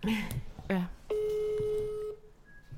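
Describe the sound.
A voice speaks briefly, then a single steady telephone ringing tone sounds for about a second, clear, as a call to someone at home connects, followed by a faint higher beep.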